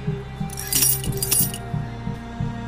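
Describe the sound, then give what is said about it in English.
A bright metallic jangle of keys, fairly loud, rattling for about a second as they're caught, over a low steady rumble of an engine or machinery. “Get the keys?”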